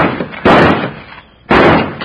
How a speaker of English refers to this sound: Then I can shoot this lock off. Stand back, will you, honey?